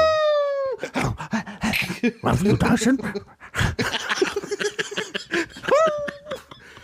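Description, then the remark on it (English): A dog lets out a drawn-out, falling howl, then a stretch of yowling vocal sounds mixed with talk, ending with another short whining howl, fairly loud. “Very evolved, these score wolves, aren't they? They're not like the ones you get in the woods. Sure, they talk.”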